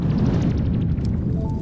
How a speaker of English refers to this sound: All right, do you hear that crackling fire? That's right, it must be time for campfire story number 3.